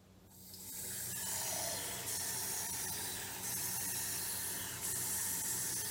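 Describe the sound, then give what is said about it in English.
Water pours steadily into a glass, a continuous hissing, splashing rush that holds fairly loud for several seconds with slight surges in brightness and no voices. “Did you hear water filling up a glass?”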